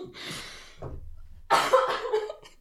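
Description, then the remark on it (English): Two harsh coughs separated by a short pause, the second louder and more forceful than the first, with no talking around them. “With the cough or without?”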